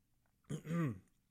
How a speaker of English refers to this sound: A little bit of a tickle in my throat there. I was about to cough, maybe, or even sneeze. That was a bit of weird combination. I still feel like I'm going to do both.